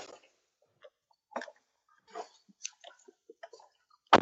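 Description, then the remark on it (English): Scattered faint clicks and rustles, like someone settling into a car seat while getting into a car, end in one sharp, loud thump of the car door shutting. No one speaks. “that is the door closing in the car.”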